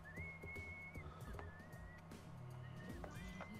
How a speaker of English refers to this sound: Is that you whistling? No, that's her whistling. Oh shit, that sounded like a guy whistling.